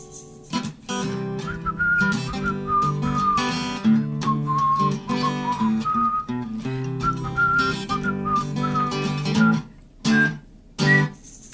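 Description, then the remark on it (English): Someone whistles a lilting tune, clear pure notes sliding between pitches over steady instrumental backing, ending with a few short separate bursts. “I did my own whistling.”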